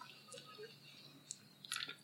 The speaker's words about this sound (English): Take a sip. Yes, take a sip. Cheers to self-revelations.